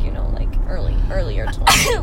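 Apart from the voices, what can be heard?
sneeze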